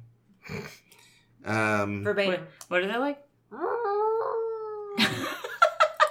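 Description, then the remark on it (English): A person's voice imitates a humpback whale call with a series of swooping moans and wails that rise and fall in pitch, ending in a few breathy, higher squeals. “Sort of sounds like a cat in heat. So humpback whale.”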